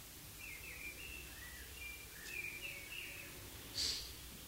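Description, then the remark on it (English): Faint birdsong: thin, high chirps and short warbling phrases scattered over a soft outdoor hush, with one slightly louder call near the end. “How these words and the birds and all the sounds, pleasant or unpleasant, really do nothing to the silence.”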